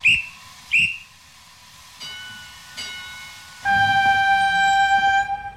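A train whistle sounds two short, sharp toots, then a pause with fainter blasts, followed by a loud, sustained multi-tone whistle held for a couple of seconds. No one speaks.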